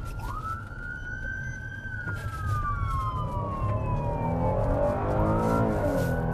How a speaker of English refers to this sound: Racing to the scene with lights and sirens in this city of 525,000.